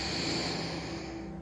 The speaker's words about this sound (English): Let's do that again. Breathing in and all the way out.